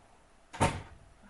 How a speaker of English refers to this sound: Hang on, I might have to shut my door one second.